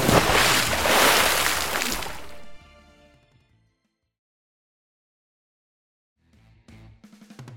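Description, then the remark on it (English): A big, loud belly-flop splash into water bursts out at once, then quickly fades into silence before faint sloshing and movement return near the end. “Belly flop!”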